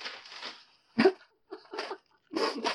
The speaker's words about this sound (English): your dog is going off in the backyard, in the background.